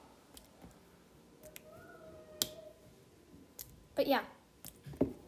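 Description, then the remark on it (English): Real slime, not water, being squished and pressed, making sporadic sharp, wet clicks and pops at an uneven pace. A person speaks briefly near the end. “So if you guys like IRL slime ASMR and stuff, then I can do some.”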